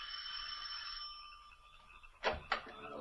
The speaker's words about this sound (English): Then, ascending the three stone stairs to the heavy oak door, he rings the bell.